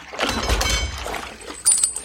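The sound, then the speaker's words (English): Coins clink and jangle as they are handed over to a ferryman as payment, a rattling metallic shuffle over a low rumble, ending in a bright, ringing chink. “The ferryman accepted the coins and began navigating the raft towards the shores of the mouth of hell.”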